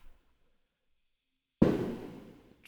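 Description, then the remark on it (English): After a second and a half of near silence, a single loud blast from a Civil War cannon booms out suddenly in Pennsylvania in July, its deep rumble trailing off over the next second with no voices. “There's always some explosion. Fucking Civil War cannon.”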